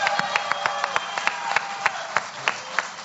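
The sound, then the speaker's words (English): An audience applauds and cheers for Timber Jim, with scattered, distinct claps over a steady wash of crowd noise, sounding lively, with no one speaking clearly. “Cheer for Timber Jim.”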